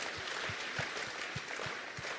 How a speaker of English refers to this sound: Anyone here 90? 85? 190? Can we give this young lady a clap?